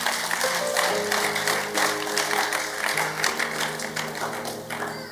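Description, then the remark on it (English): A crowd claps loudly and steadily, giving the Lord a clap of hands during a teaching service, the dense overlapping handclaps filling the room over sustained organ-like music that plays underneath. “Give the Lord a mighty clap of hands.”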